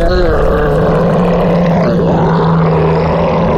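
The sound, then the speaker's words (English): A loud, guttural roar voiced by a person imitating a huge female ogre with a great club, sustained and rumbling for several seconds with a strained, growling texture. “this huge female ogre, and she's got a great club, and she's standing right in between Kraloth and Darren. She roars.”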